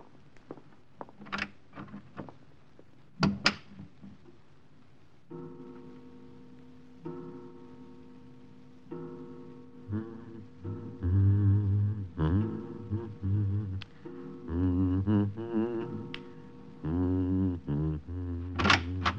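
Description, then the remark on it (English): An unlatched door clicks and thunks open in a couple of sharp knocks near the start as someone walks in, followed by soft, sustained music that gradually swells louder with no voices. “The door was unlatched.”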